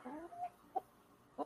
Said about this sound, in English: There's a chicken.